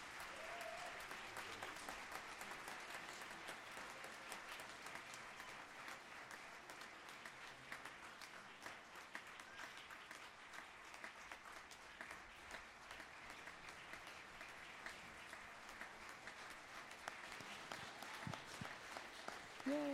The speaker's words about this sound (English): Great job, DCC kids and band. Yeah, good job, band. Excellent. And this is the, give them another applause. That's great.